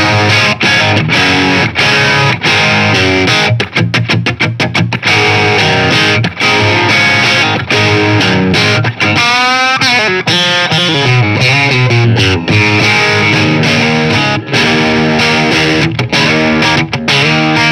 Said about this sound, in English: Okay, so we'll now do the crunch sound on the bridge pickup.